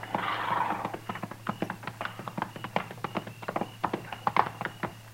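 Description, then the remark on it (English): Horse hooves clip-clop in a steady, uneven rhythm as riders approach a hunter's camp at nightfall, the many sharp hoofbeats fairly loud over a low background hum, with no voices. “We just gonna ride right up to him, Mr. Dillon?”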